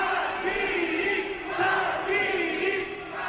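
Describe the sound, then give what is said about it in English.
A large rally crowd in Milan on Saturday cheers and chants loudly in a steady, dense roar, greeting Italy's Deputy Prime Minister Matteo Salvini and other leaders from across Europe, with voices swelling in waves and no individual speech standing out. “He and other leaders from across Europe were greeted by a pumped-up crowd in Milan on Saturday.”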